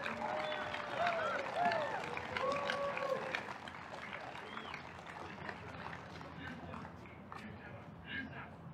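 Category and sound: crowd, crowd applause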